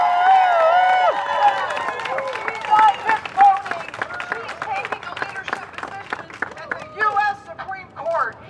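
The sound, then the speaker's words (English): A crowd at a pro-life rally, held days after the Supreme Court's ruling, cheers and applauds for Amy Coney Barrett, with high whoops and shouts riding over a dense, steady patter of clapping that carries on for several seconds before thinning out. “Let's give up a cheer for Amy Coney Barrett!”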